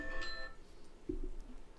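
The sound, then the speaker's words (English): A brief electronic horror alarm chime, going off at full volume, rings out with bright, layered tones that fade within half a second, followed by a dull low thump and an abrupt loud burst at the very end. “Usually it's his horror alarm.”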